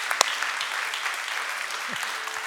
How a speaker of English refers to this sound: Would you just go ahead and stand up and give Jesus a good clap? He's worth it. Give Jesus a good clap. One good time. Come on, give him one good clap. I'm not quitting till you give it.